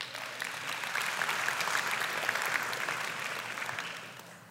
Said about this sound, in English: That's what a real man is. You may clap now.